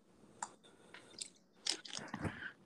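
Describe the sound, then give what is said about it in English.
Someone drinking water: a few irregular wet sips and gulps with soft clicking mouth noises, moderately loud, with no talking. “Yes, I need to drink my water real quick.”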